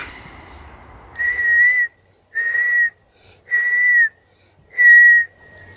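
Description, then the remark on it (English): A person in a pine forest whistles four steady, clear notes of similar pitch to call yellow-tailed black cockatoos, each held for about half a second with short even pauses between, fairly loud over a quiet outdoor background. “I was whistling and they called back.”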